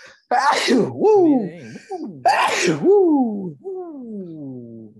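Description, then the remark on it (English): Two loud sneezes about two seconds apart, each a sharp burst trailing into a drawn-out voiced tail, with no other sounds between them. “That was only a twofer, so we're good. Yeah. Usually, I'm like a 3-4 sneeze guy.”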